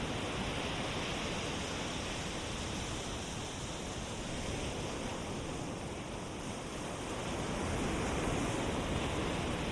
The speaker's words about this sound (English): Take a deep breath. Smell that sea air and let it out. Let's just lie right here for a minute and listen to the surf.